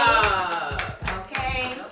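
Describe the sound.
A short burst of close hand clapping, several quick claps in an uneven rhythm, with voices cheering or talking along underneath.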